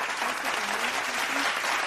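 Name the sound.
clapping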